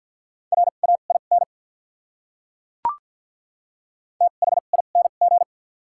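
Rapid Morse code beeps at 50 words per minute with doubled character spacing, on a single steady mid-pitched tone, two quick bursts of short and long pulses separated by a silent gap broken by one brief click.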